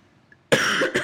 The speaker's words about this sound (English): Sorry, my cough again. On my recorder, when I cough, it like has these huge lines because it gets really loud.